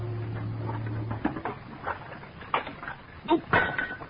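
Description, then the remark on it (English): A low steady hum fades out, followed by a series of irregular, moderately loud clinks and clatters of dishes knocking together while being washed, with no talking. “You needn't have washed the dishes.”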